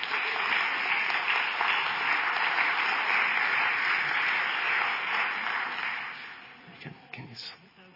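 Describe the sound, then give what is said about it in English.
A church audience cheers and applauds as two people come up to share, a dense wash of clapping with some cheering mixed in, holding strong for about six seconds before tapering off into scattered claps and a few voices. “You can cheer for them as they come on up.”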